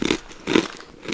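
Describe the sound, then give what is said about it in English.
Close-up chewing with three wet, crunchy bites spaced about half a second apart, loud and right at the microphone, with no talking. “I can't wait for us to all chew on the mic.”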